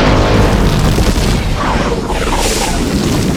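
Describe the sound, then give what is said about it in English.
A loud, sustained seismic charge explosion: a deep, roaring boom that rumbles on for several seconds, with warbling, downward-sweeping tones threading through the middle. No one speaks. “Johnny, watch out. Seismic charges.”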